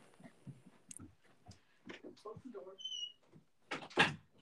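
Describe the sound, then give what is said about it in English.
A door in a house squeaks with a brief, high-pitched whine, then closes with a loud thump. Soft murmuring and rustling come just before it. “My door squeaks a lot.”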